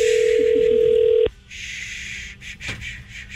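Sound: outgoing phone call ringing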